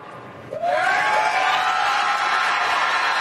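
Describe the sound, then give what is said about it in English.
A Republican primary debate crowd erupts after a moment of quiet into loud, sustained cheering and shouting, after candidates are asked to raise their hands if they would support former President Trump if convicted, with rising whoops and a dense wash of voices that holds steady for several seconds. “It's like a Trump crowd, huh?”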